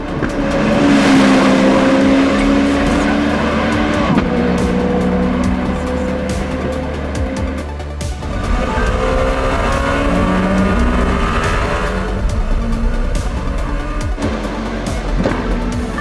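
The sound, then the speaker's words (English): A prototype race car engine roars continuously at high speed, its pitch rising and falling through gear changes and sweeping passes, loud with a faint tire squeal at moments. “just call it, less than 10 seconds off of a prototype is quite special.”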